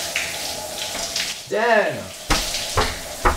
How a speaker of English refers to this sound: I should be laying by a pool instead of laying in front of the bathroom door while my roommate takes an hour-long shower.